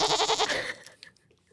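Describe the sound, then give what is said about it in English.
A loud, wavering goat bleat sound effect with a shaky, pulsing tremolo, lasting under a second before fading out, followed by a few faint clicks. “That's a new thing we're doing, by the way. Every time Arturo says go, you get the.”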